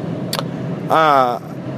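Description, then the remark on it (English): A steady whooshing roar of car air conditioning blasting hard inside the speaker's own car, with a brief tap early on and a short voiced sound partway through. “There's no AC. I've got AC. I've got it blasting.”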